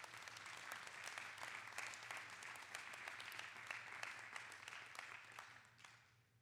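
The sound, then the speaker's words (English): A crowd applauds steadily, many hands clapping in a dense, sustained wash of sharp claps that holds level for several seconds before fading out at the end, with a low hum underneath; a hand clap of praise to the Lord. “Come on, give the Lord a hand clap of praise right there.”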